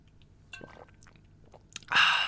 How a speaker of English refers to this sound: You know what? I'm going to take a drink of water right now because it's so good.